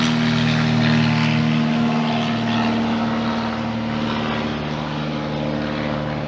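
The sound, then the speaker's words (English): A small local propeller plane drones steadily overhead, its engine hum loud and continuous with a strong low buzzing tone, fading slightly toward the end as it passes. “Oh, somebody's flying overhead. We have a little local plane going by.”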